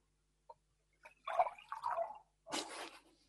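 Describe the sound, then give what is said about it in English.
Tea poured into a cup: a small clink, then a gurgling, bubbly stream for about a second, a short pause, and a brief splashing finish. Quiet, with no talking. “I can pour a cup of tea.”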